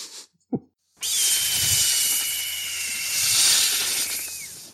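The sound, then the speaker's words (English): A creature's blood-curdling noise: after a short thump, a harsh, loud hiss erupts and holds for several seconds, with a thin, shrill screech-like tone running through it and bending at the end. No one speaks. “It made a blood-curdling noise like a hawk screech mixed with snake hisses.”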